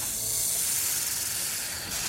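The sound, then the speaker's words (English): A steady, unbroken hiss of snakes in a pit, bright and airy, holding at the same fairly loud level for about two seconds with no voices. “Legend has it he was thrown naked into a pit full of snakes.”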